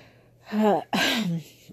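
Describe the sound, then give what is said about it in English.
Two breathy exhalations, like someone blowing warm air onto cupped hands, made by a person trying to warm cold hands, each a short, partly voiced huff with a soft airy hiss, followed by quiet. “if the breathing is is louder than normal, that is why. I'm literally trying to warm my hands.”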